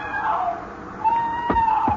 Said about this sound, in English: Then you hear it, the cry of a woman out in the surf.